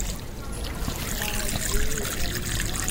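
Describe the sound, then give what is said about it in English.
A steady trickle of water runs continuously from a public drinking water fountain in Ljubljana, a thin stream with a faint outdoor murmur in the background. “And if you don't know where to start with Ljubljana's drinking water fountains, don't worry.”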